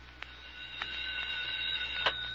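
A telephone rings at 7 o'clock with a steady, shrill, high-pitched tone that holds throughout, broken by a few faint clicks, with no voices present.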